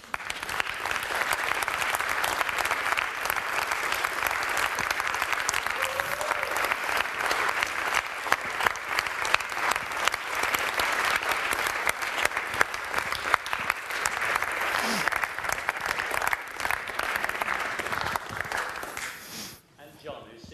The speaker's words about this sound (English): If you were part of the original 28 that planted King's Church, or those first few months of 1994, Joseph's, would you mind just standing so that we can just applaud and thank you very much?